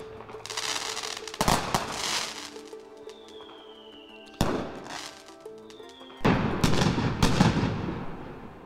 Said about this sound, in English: That sound is A local neighborhood's fireworks display on the 4th of July, B, a local neighborhood's fireworks display on New Year's Day, or C, a local neighborhood's fireworks display on a Tuesday.